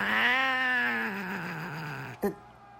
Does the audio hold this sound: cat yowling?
yes